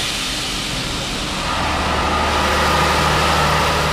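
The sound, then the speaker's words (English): A heavy truck engine runs steadily and loudly in a test cell at the Cummins Technical Center, a constant low rumble with droning tones beneath a broad roaring hiss that swells slightly after the first second and holds. “It's called cooled exhaust gas recirculation, or cooled EGR, and it's been designed and honed here in Cummins Technical Center, where engines in test cells run around the clock.”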